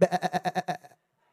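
A sheep lets out a single loud bleat with a rapid wavering tremolo, about seven quick pulses that fade away toward the end before silence.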